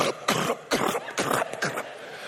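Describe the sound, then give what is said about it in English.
A voice imitates galloping horse hooves with a steady series of about five breathy, clicking bursts, fairly loud, with no talking. “We could make the sound of the galloping hooves.”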